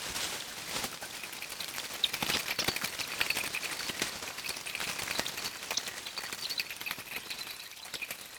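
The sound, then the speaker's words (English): A shopping trolley rattles continuously, a dense, steady clatter of small metallic clicks and taps with a thin, bright, slightly filtered tone, heard alone. “shopping trolley.”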